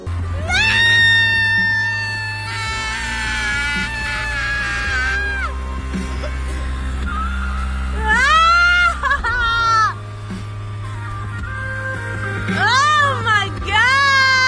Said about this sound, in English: Just for context on that last clip, because it is just her screaming, she's sticking her head outside of a car window while her, I think, manager, just an older male figure in the car, is driving on the highway.